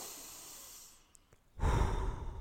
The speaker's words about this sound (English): Step one, close your eyes and take in a deep breath.